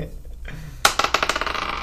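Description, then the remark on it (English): Dice clatter onto a hard tabletop, a sharp first hit followed by a quick series of smaller bouncing clicks that patter on and settle, fairly loud with no talking. “Okay, that hit all my dice, so I'm good now.”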